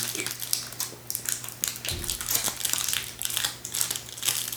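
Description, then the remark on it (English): Paper wrapping crinkles and crackles continuously in irregular bursts of bright, high rustling, with a steady low hum underneath and a soft thump partway through. “Ooh, it's in a little paper wrap.”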